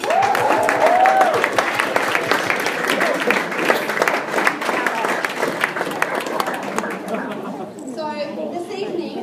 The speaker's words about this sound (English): And guys, I don't think you've been let down, so let's give all the girls a big clap.